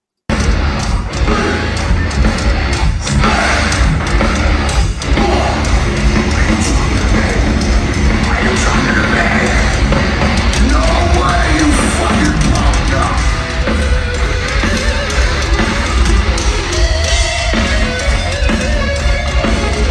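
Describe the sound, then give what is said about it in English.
A loud live rock guitar solo tears along over a full band, dense and distorted, running nonstop for the whole stretch with a raw recording feel. “So, all right, we'll play through the solo.”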